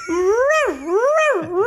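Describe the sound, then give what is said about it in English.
Small dogs yipping and howling together in a continuous, wavering whine that rises and falls in pitch, loud, with no talking. “I hope that was actual little dogs.”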